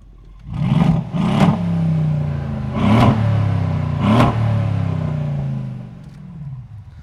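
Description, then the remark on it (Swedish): A loud Mercedes-AMG C63 V8 car engine with straight pipes revs sharply four times, each blip crackling, then settles into a deep burbling idle that fades slightly, heard outdoors. “du har en AMG sån där C63 eller heter, som alla tycker är tuffa. Ja. Som låter med raka rör”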